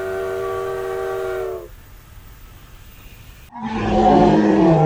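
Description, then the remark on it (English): A train horn blares with a steady chord, fades into a low rumble, then a loud roar of the train rushing past on the railway tracks. “A peanut sat on the railway track. His heart was all aflutter. Along came a train, the 9:15.”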